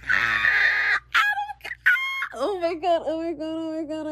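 A loud, excited high-pitched scream, breaking into several shrill, wavering bursts over a few seconds, with no talking around it; a person screaming with excitement because Adam Conover liked their tweet.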